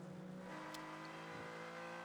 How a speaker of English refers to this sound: the number 51 Acura, Ryan Eversley for Rick Ware Racing, just going across the line now in the multicoloured Acura NSX